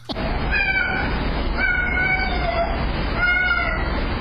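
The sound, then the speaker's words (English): A cat meows in three drawn-out, wavering calls over a steady background hiss, recorded by a security camera. The cries are oddly speech-like, almost as if a small child were calling out "Mom, where are you? Mom." Fairly loud, with no talking. “a woman was in the hospital for a few days, and while she was gone, her security camera filmed her cat meowing, and it sounds like the cat is saying, "Mom, where are you?”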